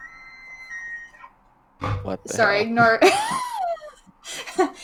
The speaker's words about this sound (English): my mother just texted me and her ringtone is an elk whistling.